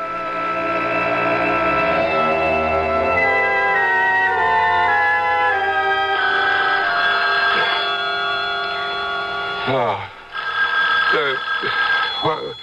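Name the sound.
telephone ringing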